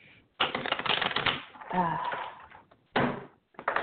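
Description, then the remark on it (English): A deck of tarot cards being quickly shuffled: a long, dense burst of rapid papery flicking, a brief pause, then shorter riffles, with a faint murmur in between. “So quick shuffle and see what comes out”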